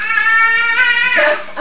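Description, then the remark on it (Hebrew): A single drawn-out, whiny meow, loud and close, holding a high wavering pitch for over a second before dipping at the end, with no talking around it. “טוב, זה יהיה הצגה רק עם חתול. הצגת החתול.”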